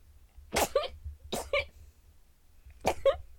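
Three sneezes, spaced unevenly over a few seconds, each a sharp, loud burst of breath followed by a brief voiced tail, with quiet background in between.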